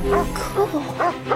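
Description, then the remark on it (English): A dog barks several times in quick succession, short sharp woofs with brief yelps mixed in, loud over a low background hum. “Did you see the dog?”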